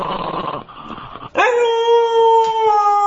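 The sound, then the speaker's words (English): A person mimics a dog's howl: a rough, breathy lead-in, then a loud, sustained howl that swoops upward and holds steady until the end. “A Nazi dog, that's amazing. Nazi I dog. Love how the camera just picks up … doing it.”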